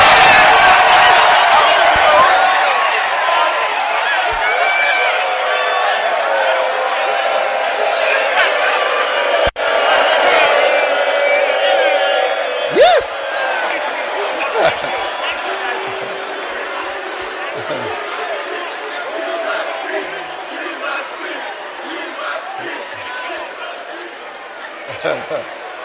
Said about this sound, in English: When you get married and you go to the room, start screaming. Start shouting. Start making noise.